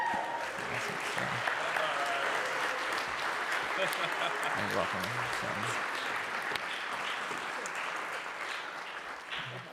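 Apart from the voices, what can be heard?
audience applause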